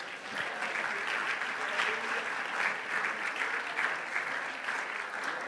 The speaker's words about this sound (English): Why don't you just lift him up with a hand clap of praise tonight as you're seated.